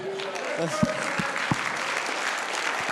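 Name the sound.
audience clapping hands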